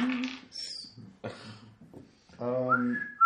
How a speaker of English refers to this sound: You just whistle, and he looks up, and let's see how.